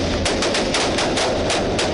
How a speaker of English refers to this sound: So when we first knocked on the door of the house, the shooting started. A fierce gun battle erupted.